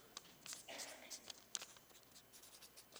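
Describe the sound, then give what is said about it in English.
A pen scratches across a sheet of paper in a string of quick, uneven strokes, fairly quiet, with short pauses between bursts of writing. “And every time God shows up, you just write down what happened.”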